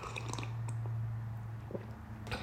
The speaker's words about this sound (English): 1 second, guys. I have to sip my coffee.